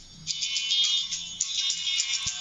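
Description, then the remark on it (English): A phone rings with a twangy, banjo-style ringtone: quick plucked notes in a steady, bright run, fairly loud, with no one talking over it. “Do you got a different ring for anybody on the phone there?”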